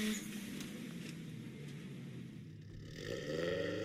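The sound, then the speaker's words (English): A car engine revs steadily with a deep, throaty exhaust note, the pitch climbing near the end as it accelerates. Loud, with no voices. “It sounds like your car coming up the coming up the hill.”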